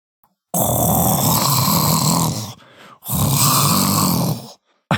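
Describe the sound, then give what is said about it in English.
A child imitates a tiger's roar with two long, loud, raspy growls, each about two seconds, separated by a brief pause. No words are spoken. “Doing an impression of the tiger?”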